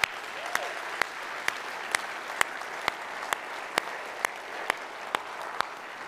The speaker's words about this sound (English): Can we just at one moment at all campuses, can we just applaud and give honor to our moms right now? Come on.